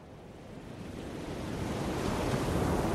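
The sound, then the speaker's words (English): Rough waves and gusting wind of the stormy Bering Sea in winter, between Alaska and Siberia, roar together in a dense, continuous wash of noise that slowly swells louder, with no voices present. “Winter in this northern sea, framed by Alaska and Siberia, is frigid, stormy, and dark.”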